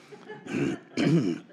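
cough

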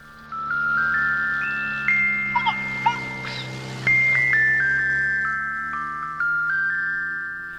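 ice cream truck jingle

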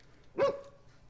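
dog barking

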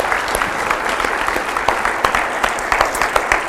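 audience clapping

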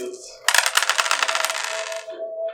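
dice being rolled

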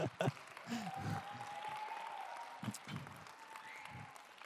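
audience clapping

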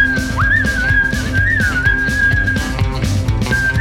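whistled melody

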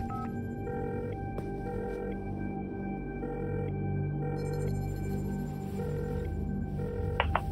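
telephone ringing

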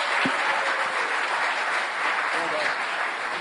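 audience round of applause

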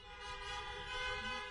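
car horns honking

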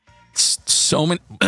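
burp

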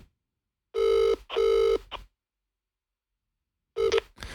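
phone call ringing unanswered

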